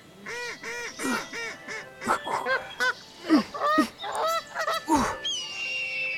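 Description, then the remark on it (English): A big flock of ducks quacking and honking as it flies down from the sky and lands in a swamp, many harsh nasal calls overlapping in a busy, continuous clamor, with no voices. “And then, all at once, a big flock of ducks flew down from the sky and landed right in the trap.”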